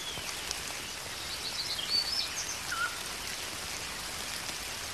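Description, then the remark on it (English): Steady rain falls on an afternoon in July in a continuous, even hiss with no one speaking, and a couple of faint bird chirps break through briefly in the middle. “One raining afternoon in July,”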